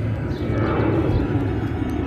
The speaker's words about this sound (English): Just like these travelers on the plane that is going overhead.